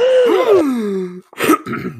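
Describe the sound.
A voice imitating a character's startled gasp: a drawn-out, wavering vocal groan that slides downward, then a short, sharp breathy intake, fairly loud, with no other sounds.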